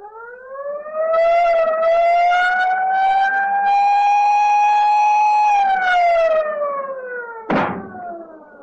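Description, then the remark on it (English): A submarine collision alarm, sounded on order as the submarine dives to avoid a ship, wails steadily. It is a loud, buzzy harmonic tone that slowly rises in pitch, holds, then slides down, with a sharp metallic clank just before it fades. “Down the collision alarm. Collision alarm, sir.”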